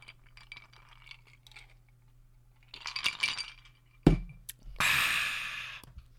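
Glasses clink together once in a toast, a sharp chime amid quiet scuffling, followed by a burst of steady hissy rustling. No one speaks.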